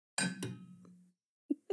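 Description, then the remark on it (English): Two quick clinks of glasses touching in a toast, the first ringing briefly with a bright metallic shimmer before fading, followed by two soft, low thuds. “Our clinks are so sad.”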